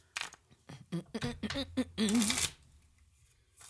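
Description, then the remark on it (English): A deck of playing cards is shuffled: a quick series of crisp snapping riffles builds into a longer whirring riffle, while a faint voice briefly murmurs underneath, then quiet. “Oh, well, she's so seriously shuffling.”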